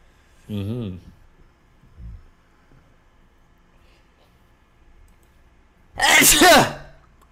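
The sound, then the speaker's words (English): A single loud, explosive sneeze bursts out near the end, preceded by a short voiced intake of breath and a quieter stretch with faint low sounds in between. “sneeze that every episode's gonna”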